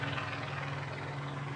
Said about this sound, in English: So we're looking, basically, we're looking at a helicopter right out the window. It's very close.